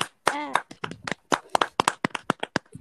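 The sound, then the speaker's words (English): A brief vocal exclamation gives way to a quick, uneven run of sharp hand claps, about a dozen, fairly loud, like a small round of applause. “Let's do a round of applause real quick, everybody.”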